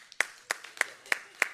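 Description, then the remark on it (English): Five sharp, evenly spaced claps in a steady rhythm, fairly soft, with no talking over them, as an audience votes with its applause. “Clap if you want him.”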